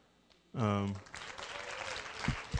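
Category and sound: crowd, audience clapping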